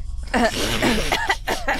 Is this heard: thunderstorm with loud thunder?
no